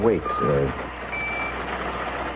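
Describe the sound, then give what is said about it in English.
A pocket alarm watch beeps thin, high tones in short bursts, steady and moderately loud against a noisy background, with a brief voice at the very start. “I've got a pocket alarm watch, and it keeps trying to tell me something.”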